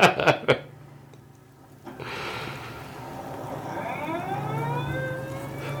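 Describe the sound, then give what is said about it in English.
A few sharp thuds open, then a 1970s police car siren rises in, its wail sweeping up and down steadily over a low engine rumble, growing louder toward the end. “Oh God, 70s cop cars.”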